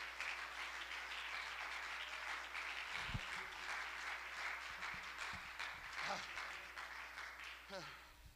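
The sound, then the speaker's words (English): A church audience claps hands to praise the Lord in a sustained, dense burst of applause lasting several seconds, steady and loud, with a few vocal cheers rising through it. “Can we clap our hands and love the Lord one more time?”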